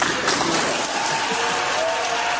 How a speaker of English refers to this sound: As the sustained applause in the chamber indicated, this was a moment of great celebration for Democrats and arguably for the country.